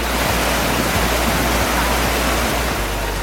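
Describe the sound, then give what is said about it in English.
A steady, loud roar of rushing floodwater from a freak storm in Spain that washed away cars and flooded basements fills the whole clip, dense and hissing, with occasional low thumps underneath and no voices. “A freak storm washes away cars and floods basements in Spain.”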